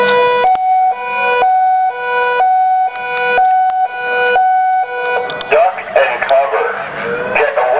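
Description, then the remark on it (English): A loud two-tone alarm siren at a compound wails, alternating steadily between a high and a low pitch for several seconds before a person starts talking over it toward the end. “He switched on the alarm and a voice warned everyone at the compound thus.”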